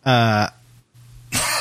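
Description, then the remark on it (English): A loud voiced throat-clearing sound, followed by a brief quiet pause with low hum, then a harsh noisy burst like the start of a cough. “Sorry, I was just trying reaching for the cough button.”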